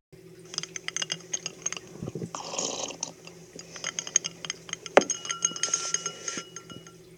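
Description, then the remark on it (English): Glass shatters and breaks apart, followed by a dense scatter of tinkling, clinking shards, with a sharp crash midway and fragments settling. Fairly loud, with no voices. “One moment you could be living the life, and the next thing you know, crash! You could shatter into a million microscopic pieces.”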